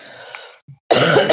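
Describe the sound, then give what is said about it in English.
A breathy nasal snort, a short pause, then a loud, harsh cough, with no talking around them. “Cough and a snort, cough.”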